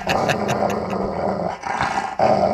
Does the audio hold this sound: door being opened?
no